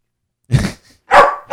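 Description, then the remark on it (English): A person imitates a dog, making the sounds from the back of the neck without moving the mouth, producing three short, loud barks in quick succession, each a gruff burst with a rough, throaty edge, with no other sounds. “I make dog sounds out of the back of my neck. I'm a dog ventriloquist.”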